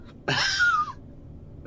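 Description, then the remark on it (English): One loud sniff lasting under a second, its pitch sliding downward toward the end, followed by quiet with a faint breath at the very end. “Sniffing with a downward inflection.”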